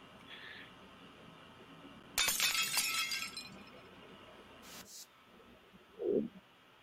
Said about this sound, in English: Let's see if we got the glass break. Decent. I like this glass break.